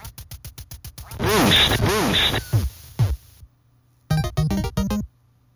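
A retro video game duck-hunting sound effect: a quick run of sharp clicks, then warbling electronic quacks rising and falling, a pause, and a short burst of bright beeping notes. Loud, no talking.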